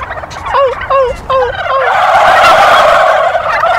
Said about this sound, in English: Now, female turkeys actually don't gobble, they cluck. They make a very noise. And if I do that, the male turkeys will hear it, and they'll probably get turned on and gobble back. So let's give it a go.